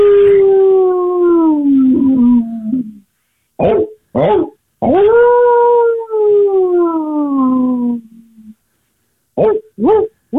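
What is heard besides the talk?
hound howling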